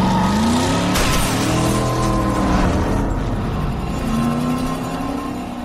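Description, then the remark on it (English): A car engine runs loudly, its pitch rising and falling as it revs repeatedly over a steady throaty drone, with no voices. “I need you to shut off the car.”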